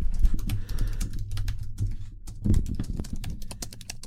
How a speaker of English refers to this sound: Sounds made up, doesn't it? But she's actually typing. Okay, you can stop.